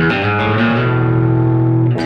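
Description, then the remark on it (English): A distorted electric guitar plays a short hammer-on from the 6th to the 7th fret on the low E string, a single note rising a step then sustaining loudly with a thick buzzing tone for about two seconds before a new attack. “And then you're gonna shift over and then hammer on the 6th to 7th fret on the low E string.”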